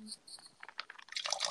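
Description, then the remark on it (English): Wine poured from a box into a glass: a soft trickle of sputtering splashes that builds into a denser, brighter stream toward the end, fairly quiet overall. “That's me pouring some more boxed wine.”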